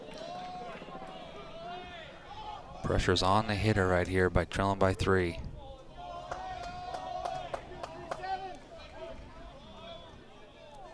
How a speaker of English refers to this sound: You can hear the Cougar fans out there cheering. Dugouts are now the opposite. Portland's a little quiet, and the Cougs dugout's going loud.